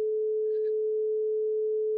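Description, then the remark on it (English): A steady, pure electronic tone holds at one constant pitch for the full two seconds, loud and unwavering, with only a faint brief chirp near the start. “Yeah, so they're all going to be singular tones.”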